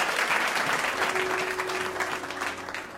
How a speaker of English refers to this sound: Let's give a hand clap to the Lord. Amen.